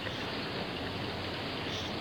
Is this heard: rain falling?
yes